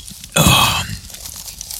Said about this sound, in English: Alright, I got a smore here, but I'll try to chew discreetly.